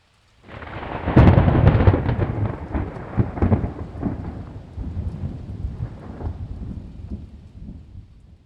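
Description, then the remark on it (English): A loud clap of thunder breaks about a second in, then rumbles on over steady falling rain that keeps hissing as the rolling thunder slowly fades. “And you wonder, is a storm coming?”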